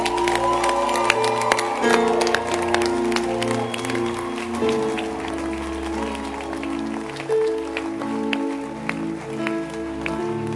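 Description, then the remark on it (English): A crowd applauds for pastors, including those of the Methodist Church, with dense, steady hand clapping that carries on throughout, sharp individual claps standing out over a sustained tonal hum of music or voices underneath. “And I want to hear a louder hand clap because there's a crowd here.”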